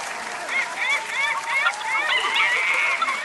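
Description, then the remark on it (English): Studio audience applause, prompted by an applause sign, swells and holds steady for a few seconds, dense clapping mixed with whoops and cheering voices rising and falling over it. “Just pop that applause sign back on for a minute.”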